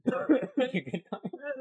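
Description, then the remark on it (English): A person stifles a cough after something went down the wrong pipe, giving a string of strained, muffled bursts and throaty catches, lasting under two seconds. “I went down the wrong pipe, and I'll take everything I had in my soul just to not cough.”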